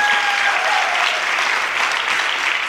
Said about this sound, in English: a big round of applause.